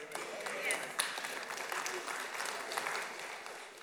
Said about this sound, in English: That was such a polite applause for God. A great God, a mighty God. If you were in Knoxville watching Tennessee play, you wouldn't have done that.